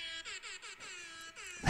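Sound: air horn sound effect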